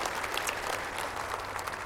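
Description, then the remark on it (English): An audience applauds steadily to give a warm welcome to guests present at the gathering, a dense wash of many hands clapping at an even, sustained level for the full two seconds, with no voices standing out. “Can we just give them a warm welcome?”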